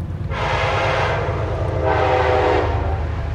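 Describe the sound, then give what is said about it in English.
A train rumbles past on tracks along the Hudson River, its horn sounding in two long blasts over the steady low roar of the cars on the rails. “Trains run on tracks on both sides of the river, and there are lots of barges, tankers, and pleasure boats on this busy waterway.”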